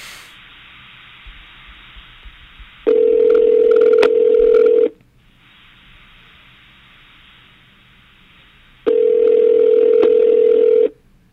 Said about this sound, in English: He probably won't even answer his phone like a jerk.